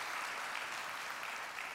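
An audience claps together in a steady, dense wash of applause that holds at an even loudness for the whole moment, with no voices standing out.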